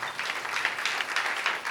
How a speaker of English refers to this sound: Clap for one-time payment.